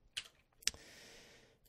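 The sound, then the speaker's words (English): Fast typing on a computer keyboard while correcting a misspelled word: two sharp clacks, then a quick, blurred rattle of keystrokes lasting about a second, quiet with no voices. “Fast typing.”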